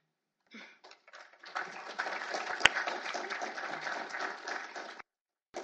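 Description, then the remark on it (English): An audience at a panel discussion breaks into applause: scattered claps quickly swell into a dense, steady wash of clapping from many people, holding for several seconds before cutting off abruptly. “I'm going to ask that you please hold your applause for all the panelists until the end so we can get through what they'd like to say.”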